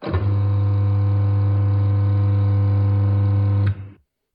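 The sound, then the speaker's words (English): A Magimix food processor with a QuietMark certified motor runs with a steady, low-pitched hum and even buzzing overtones for nearly four seconds, then switches off with a click and quickly winds down. No one speaks. “I would say one screams at you and the other one hums.”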